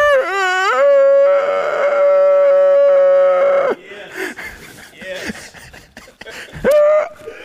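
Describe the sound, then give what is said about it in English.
A person on hands and knees imitates a dog with a long, loud, sustained howling cry, then a run of shorter, rougher bark-like yelps and one last rising yelp, with no other talk. “That's the only thing I could do was squeal like a pig and bark like a dog, all right?”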